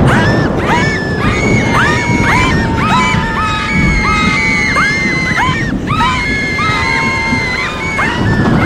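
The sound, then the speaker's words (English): On a cold, windy night, a crowd of girls in a ward scream as bolted doors fly open, yelling "It's the Grey Lady!". Many high shrieks overlap loudly and continuously over a rough, noisy commotion, with crashing sounds mixed in throughout. “The doors flew open, girls yelled out, "It's the Grey Lady!" Lots of screaming and havoc, all that pent-up adolescent energy.”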